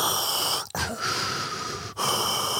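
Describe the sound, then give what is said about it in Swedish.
A voice imitates heavy, rasping mechanical breathing through the grille of a shiny black helmet, a long hissing inhale followed by an exhale, fairly loud with no talking. “Man andas igenom något sådär, som ett galler nästan.”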